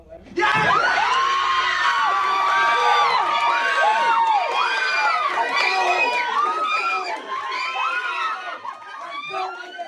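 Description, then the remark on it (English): A family group cheers and shouts excitedly after an acceptance decision says congratulations, a dense burst of overlapping high-pitched yells and whoops that erupts suddenly and stays loud throughout. “We cheered. And everybody just went crazy.”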